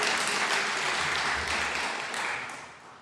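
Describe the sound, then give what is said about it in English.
A church audience breaks into steady applause, many hands clapping at once in a dense, crackling wash that holds for a couple of seconds and then tapers off toward the end. “Y'all can clap. How about that? Y'all just clap.”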